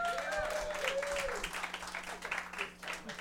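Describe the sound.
An audience at a comedy show breaks into steady, dense applause for a man called up on stage, filling the whole few seconds, with a few cheering voices rising over the clapping near the start.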